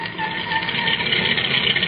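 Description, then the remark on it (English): A delivery truck that has just arrived idles with a steady, low mechanical rumble and a constant hum, holding an even level for a couple of seconds with no voices. “There's a truck just arrived with a delivery.”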